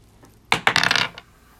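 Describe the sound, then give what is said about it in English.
A die clatters across a hard tabletop, rolled by a player to decide who goes first in a game: two sharp impacts followed by a quick rattling series of bounces that settles within about half a second, fairly loud with no talking. “Okay, so give me a roll and we'll see who we start off with.”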